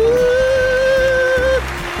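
A short musical sound-drop jingle played to introduce a Q&A segment: a bright, sustained synth tone holds over a steady, pulsing beat for about a second and a half, then cuts off abruptly, leaving a softer tail.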